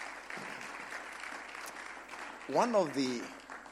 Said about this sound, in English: Clap for the pastors. It's nice.